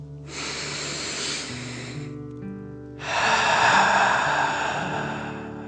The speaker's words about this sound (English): Breathe in through your nose, filling up your belly, and then out through your mouth, pretending you are breathing fire. Ready? Deep breath in and out.